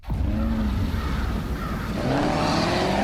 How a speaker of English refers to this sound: And you've got what I don't know that much about cars, but looks like a Lamborghini sitting out here on this off-road landscape, just spinning its wheels.